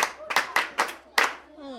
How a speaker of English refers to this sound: Children, is that true? Yes, Uncle. Good. Now clap for yourselves.